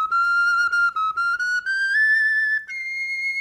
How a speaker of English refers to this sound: Bone flutes were the first musical instruments us humans made that can still be found today. Flutes made from bird bones and mammoth bones. You can still play them today. Here's a highly edited down recording from the Peabody Museum. That's Harvard.